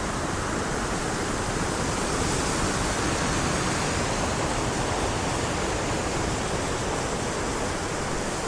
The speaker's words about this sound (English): Let's just enjoy the last intensity of this raging torrent. So we just step across the rocks down towards where the water falls away again.